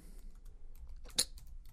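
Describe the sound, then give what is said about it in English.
Soft, irregular clicks of someone typing on a computer keyboard while looking something up, with one sharper keystroke standing out midway, against a quiet low hum. “And you get to hear my typing.”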